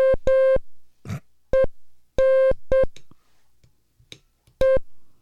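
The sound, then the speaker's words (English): Morse code tones sent on a straight key at 20 words per minute: a steady, mid-pitched buzzy beep sounding in a loose series of short and long pulses, with soft clicks and a brief breathy noise in the pauses. “You got the straight key for transmit.”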